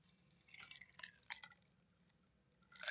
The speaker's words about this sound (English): Excuse me, I had to take a sip of water here.